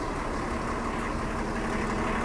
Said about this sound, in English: Walking here behind a bus. Nice burst of bus heat.